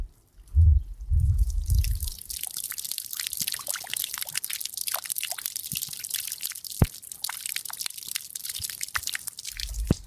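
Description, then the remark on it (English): Gentle rain falls in a steady, hissing patter with scattered sharper drips during a thunderstorm, heard from a front porch, while low, soft thunder rumbles across the sky, swelling briefly at the start and returning at the very end. “I'm just kind of out here on the front porch listening to the thunder rumble across the sky. Gentle rain is falling.”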